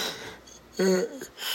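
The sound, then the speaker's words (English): A single breathy yawn: a long inhale, a brief voiced groan in the middle, then a soft exhale trailing off. No one speaks. “I can't stop yawning.”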